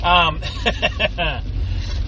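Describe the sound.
Steady low vehicle rumble of completely stopped traffic with many semi trucks around, in rain, fills the background while a voice talks over it in short bursts.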